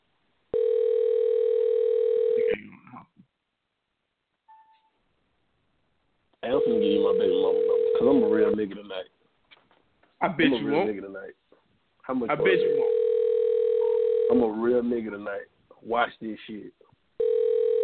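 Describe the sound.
A phone call to an ex-partner rings out on the line, a steady ringback tone repeating three times with pauses between, while people talk over the later rings.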